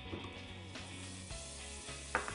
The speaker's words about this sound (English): And you can hear by the sizzle that that pan's got some heat.